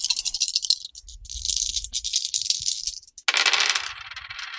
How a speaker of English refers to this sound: I roll 2 white dice and 2 black dice.